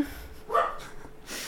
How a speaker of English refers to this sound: Sorry, my dog's barking, by the way. Someone's home, and I'm probably going to have to turn off my mic in a hot second to shout at them.